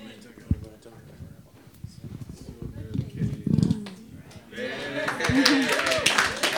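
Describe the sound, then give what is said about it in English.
Several people talk, then an audience breaks into a burst of clapping that builds and stays fairly loud through the final couple of seconds, with voices still audible underneath. “Oh, it happens once a year that we clap.”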